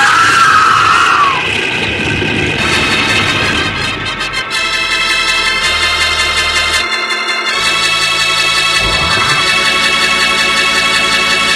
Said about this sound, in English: Madre mía, those trees, look out. It's an avalanche. We'll be buried alive.